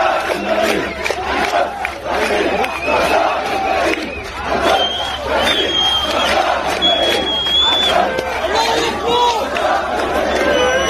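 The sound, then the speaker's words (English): A large crowd at an asylum center in Europe cheers and shouts in a steady, loud roar for the whole stretch, voices overlapping chaotically, with a few sharp high whistles cutting through midway. “Of course they're going to cheer for it.”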